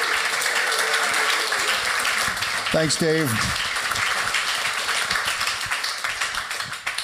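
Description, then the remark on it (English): A large audience at the NYU Steinhardt Jazz Interview Series applauds steadily to welcome jazz guest John Scofield, a dense wash of clapping that runs the whole time, with a man briefly speaking over it midway as the applause begins to thin toward the end. “How about a warm round of applause for Mr.”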